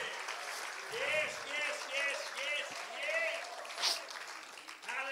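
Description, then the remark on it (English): An audience claps steadily for about five seconds to thank God: a dense, loud wash of many hands, with voices calling out and cheering over the top. “Come on, let's clap our hands and thank Him for His great and faithfulness.”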